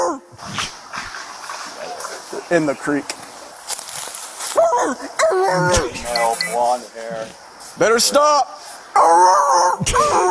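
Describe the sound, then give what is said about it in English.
A man's voice imitates a police dog baying on a scent, with drawn-out, wavering howls and yelps rising and falling, interspersed with brief spoken words, fairly loud. “That really is, that's how dogs sound when they're on the scent.”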